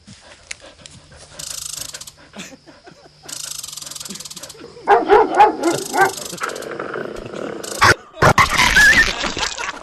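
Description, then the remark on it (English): Dogs bark and yip in excited, uneven bursts as they meet chinchillas for the first time, mixed with loud squeaky, rattling mechanical scraping that starts and stops throughout. “Of Christy's dogs meeting the chinchillas.”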